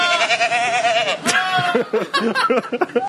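A goat lets out a long, loud, wavering scream that sounds eerily like a human yelling, followed by a burst of shorter, choppy cries in quick succession.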